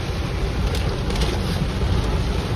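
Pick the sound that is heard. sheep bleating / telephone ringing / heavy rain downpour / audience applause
heavy rain downpour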